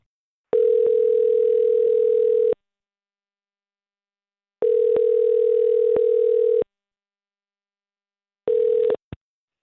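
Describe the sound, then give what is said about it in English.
A telephone ringback tone purrs through an earpiece as Mix 94.7 radio hosts call a listener: two long steady rings with pauses between them, then a third ring cut short by a click as the line picks up. No voices. “We're going to call her right now and see if we can figure out what's going on, okay?”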